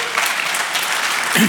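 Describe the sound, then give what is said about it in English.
An audience claps steadily, a dense, even crackle of many hands that holds at a constant level; a voice begins speaking briefly as it ends. “But, they don't clap for me.”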